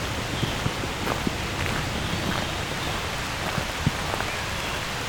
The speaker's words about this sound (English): The presence of trees can really make rain sound louder than it is. Sound a lot more than it is.